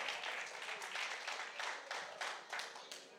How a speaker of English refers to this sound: I know online they're clapping right now. Online they're clapping. Praise the Lord. Y'all join them online. They're clapping online.